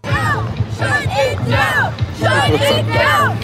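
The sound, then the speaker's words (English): A large crowd of protesters chants "shut it down" in loud, rhythmic bursts, many voices shouting together in repeated phrases with a steady low rumble underneath, continuous. “They're screaming, shut it down, shut it down, shut it down.”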